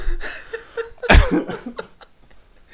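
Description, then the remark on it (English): A single harsh cough bursts out loudly, followed by a few softer breathy sounds and faint rustling, with no speech. “I'm gonna cough, dude.”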